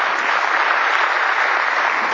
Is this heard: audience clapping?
yes